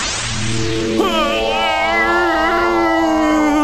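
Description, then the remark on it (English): A long, exaggerated voiced yawn from a prisoner tired during an interrogation: a breathy intake opens into a loud, drawn-out tone that wavers and slowly sinks in pitch for about three seconds. “Pardon the yawn.”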